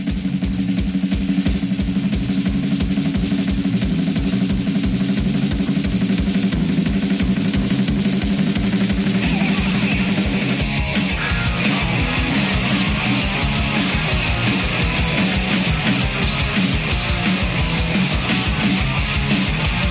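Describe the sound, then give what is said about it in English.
Loud, dense rock music with heavy distorted guitars and pounding drums, a male voice singing and shouting over it; the band grows busier and more driving about halfway through. “We got a clip of one of the songs.”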